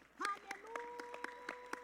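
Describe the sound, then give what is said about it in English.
An audience claps in steady unison at the pastor's request, sharp even beats about four per second, while sustained voices hum or call out beneath the rhythm. “And please let us clap.”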